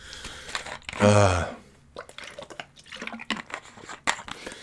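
Water pours briefly into a container, a loud gurgling burst with a rising tone, followed by scattered small drips and splashes over the next few seconds.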